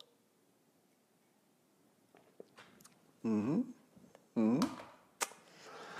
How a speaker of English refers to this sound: And join me now for the unparalleled pleasure, the dopamine hit of the day, the thing that makes everything better. Pandemics, economics, racism, you name it. It's all better with a simultaneous sip. Go!